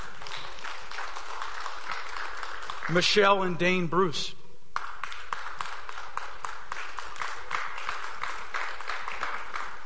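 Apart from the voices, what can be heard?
audience applause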